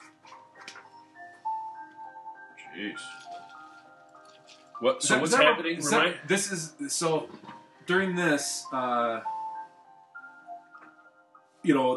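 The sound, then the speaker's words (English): A song with soft, sustained piano tones plays quietly, notes ringing and fading, before people start talking loudly over it for several seconds. “Like piano tones.”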